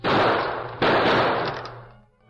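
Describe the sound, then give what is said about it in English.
Two loud gunshots ring out less than a second apart, each blast trailing off in a long, rumbling decay, with no voices heard; the Lone Ranger fires silver bullets at a big heavy iron lock on a trap door, the bullets tearing through pine boards. “Heavy bullets tore through the pine boards, but the lock held firm, resisting all of the Lone Ranger's strength.”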